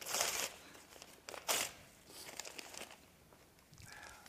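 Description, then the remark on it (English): Paper being torn into pieces, a child's drawing ripped up for a tear-and-repair trick: a few quick, crinkly ripping bursts, with short pauses between tears and no talking. “Here, tear this piece of paper into as many pieces as you'd like.”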